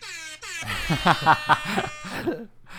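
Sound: voice imitating an alarm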